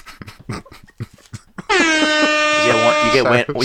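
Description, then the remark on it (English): Quick speech leads into a loud, sustained air horn blast that holds for about two seconds, its harsh brassy tone wavering slightly before cutting off. “You get one air horn.”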